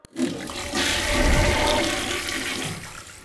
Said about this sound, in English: Wow, that toilet really does work well, people. It flushed that earpiece right down. Thing's got some damn power.